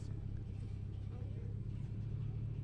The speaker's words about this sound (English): This car's leaving, we could have reverse parked right there. Yeah, that's true. Are they leaving? Yeah, they are. Nice.